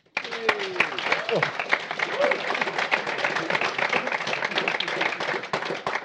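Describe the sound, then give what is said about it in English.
An audience claps steadily for a panel of political journalists for several seconds, a dense, continuous patter of many hands at a fairly loud level, with a few voices calling out faintly at the start. “If you like, you can all give them a clap.”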